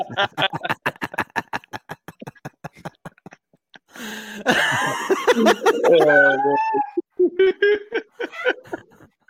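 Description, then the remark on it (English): A rapid run of short, choppy bursts gives way to loud, drawn-out cat meows with rising and falling pitch, clear, ending in a few shorter mews. “I don't have a snake soundbite. We loaded up on cats.”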